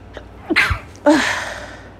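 A loud sneeze caused by allergies, in two quick bursts, with a sharp breathy lead-in and a long hissing exhale that trails off. No one talks.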